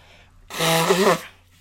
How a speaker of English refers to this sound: Got a little fucking shit on my nose. I hate this shit. I'm going to blow my nose live on camera right now.